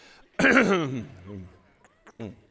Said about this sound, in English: Somebody, you clearing your throat for me? Let's all do it together.